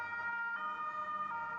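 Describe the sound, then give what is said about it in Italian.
A police siren sound effect, started by pressing a button on a table, wails steadily and loudly, its sustained tones rising slightly in pitch twice across the short stretch, with no voices present. “Partì l'effetto sonoro della sirena della polizia.”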